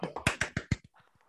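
A brief round of hand clapping: about six sharp, evenly spaced claps, then a few fainter ones trailing off, with no one talking.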